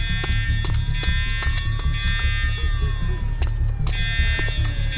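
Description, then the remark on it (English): An alarm rings with a steady, shrill electronic tone that briefly cuts out partway through, over a constant low rumble and scattered sharp clicks and knocks. “That fucking alarm.”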